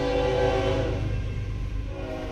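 A train rumbles steadily past at close range while its horn sounds a sustained, droning blast, then fades under the continuing roar of the rail cars.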